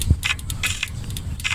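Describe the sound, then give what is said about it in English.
Bicycle brake pads rub against a spinning wheel that has just been put back on the bike after a tire change, making a repeated hissy scraping swish that pulses in an uneven rhythm, with a soft low thump at the start and no talking. “Now the brake pads are rubbing, as you can hear.”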